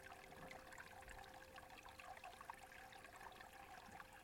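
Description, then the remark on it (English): A small stream trickles steadily over rocks, running through peat and heath and down a chute of dolerite, a continuous soft babble and splash that holds even for the whole stretch, fairly quiet, with no voices. “Like an animal, I slurp some more water out of that neat little rivulet that runs through the peat and heath and out down a shoot of dolerite, urgently, as if it's addicted to salt.”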